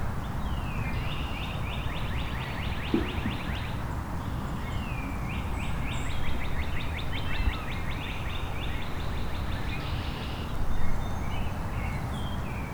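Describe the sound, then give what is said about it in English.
A northern waterthrush sings repeated bursts of sharp, rapid chirping notes that carry over steady low background noise, moderately loud and fairly close, with no voices. “Northern water thrush.”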